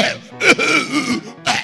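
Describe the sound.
A man's voice imitates a goat with COVID-19 coughing, giving a few harsh, throaty hacks with a strained, bleating groan in between, loud with no other sounds.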